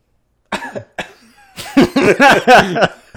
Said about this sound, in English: You didn't hear me cough.